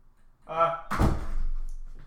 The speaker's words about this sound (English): I'll check the door, actually. That's a good idea. Checking the door.